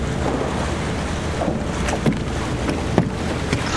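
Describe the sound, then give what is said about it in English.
Steady sloshing water with a few sharp splashes breaking through, the clearest near the middle and toward the end, as a person emerges from underwater pulling another person along. No voices. “There's a loud splash, and Savannah emerges with Bronner in tow.”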